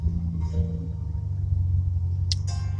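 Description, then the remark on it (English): A car engine drones loudly and steadily, its deep low rumble constant throughout, with a brief higher-pitched squeak or clatter cutting in near the end. “I have my phone in my hand because if I put it anywhere else, my engine's so loud you can't hear me.”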